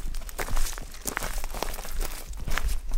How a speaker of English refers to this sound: We make our way to the Westport River, ducking under bare branches and crunching through leafless twigs in the dirt.